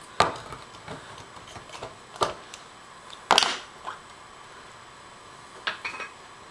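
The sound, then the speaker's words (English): A can of organic milk is opened with an ordinary can opener: a few sharp metallic clicks and scrapes come at irregular intervals, with one louder crunch in the middle and quiet pauses between, and no talking. “That you can use an ordinary can opener.”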